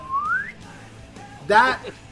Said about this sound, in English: you have to get your fingers together like this. And you go. You know, you have to go down with your thumb and your middle finger making a circle downwards. You whistle.